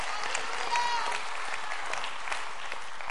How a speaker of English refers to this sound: Oh yes, clap your hands one more time and let's give him praise.